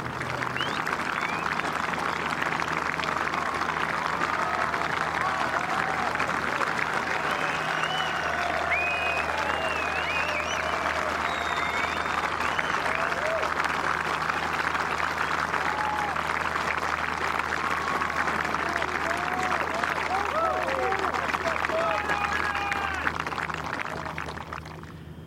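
A large grandstand crowd beside the 17th hole (the Road Hole) at the Open golf championship applauds loudly and steadily after a four-iron approach to the heart of the green, a dense wash of clapping with scattered cheers and whistles that holds for about twenty-five seconds before easing slightly at the end.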